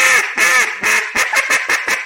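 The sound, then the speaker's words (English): Loud duck call imitating hen quacks: a few slow, drawn-out quacks followed by a quicker run of short quacks, played alone with no talking. “So I can do a slow hen to start with and then a fast hen.”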